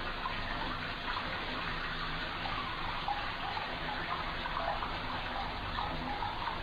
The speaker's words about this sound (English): Nothing's even happening. She's just splashing in a bathtub, but it's so horrifying because her head's underwater.